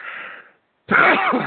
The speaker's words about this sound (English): I'm going to sneeze.